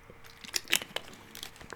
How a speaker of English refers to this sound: Take a swig of water.